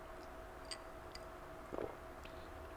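A single soft gulping swallow, a brief throaty gurgle near the middle, surrounded by a quiet background with a few faint mouth clicks and no talking.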